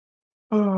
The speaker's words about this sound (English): And one exercise that's very simple and effective to release tension is to yawn. Just yawn.